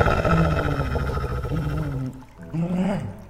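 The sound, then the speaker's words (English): Three emaciated wolves, chained to the wall of a cave, growl low and continuously, a dense rumbling snarl that dips briefly and then swells again with a rising, throaty edge. “Off to your right, you see 3 emaciated wolves growling at you as you approach the interior of the cave.”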